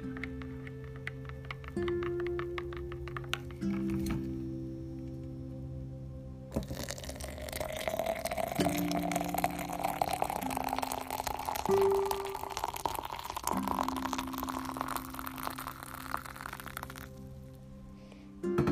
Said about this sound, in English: Now, when you hear that water go inside my coffee cup, that is the sound of heaven.